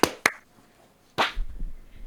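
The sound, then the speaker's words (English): Sharp hand claps made after a countdown to sync a recording: two quick, crisp ones in succession, then after a short pause a third, fuller clap, followed by faint low rumble and no talking. “clap sync. 3, 2, 1.”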